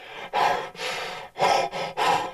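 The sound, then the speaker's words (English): A tending or breeding bull panting: five loud, breathy huffs in quick rhythmic succession, each a rough, airy rush of breath with brief pauses between, and no talking. “You got the pants.”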